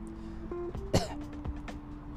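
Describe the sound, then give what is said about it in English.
One sharp cough with a rough throat-clearing quality, over a steady low hum and a few faint clicks, with no speech. “The moment that I'm coughing through. It's a Zen cough, though.”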